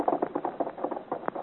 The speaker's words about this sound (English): I have no doubt the beat of your horse's hooves is like a funeral knell to you. They take you farther and farther from Saint-Germain.